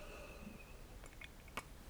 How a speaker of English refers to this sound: I'm just going to get a sip of tea right here.